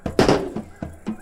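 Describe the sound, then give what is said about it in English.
A die is thrown hard against a tabletop during a game, landing with a loud clack and bouncing several more times in quick, uneven knocks before settling. “I got to get a new die. That sounds like a gunshot.”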